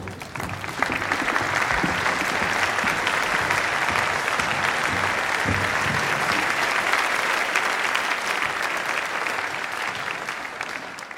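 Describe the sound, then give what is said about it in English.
Steady, even applause from the audience at a Philharmonic Symphony concert conducted by Leonard Bernstein, standing in for Bruno Walter: a dense patter of many hands clapping at a moderate level throughout, polite and sustained rather than wild, with no cheering or voices standing out. “And the crowd has to be polite, but not enthusiastic.”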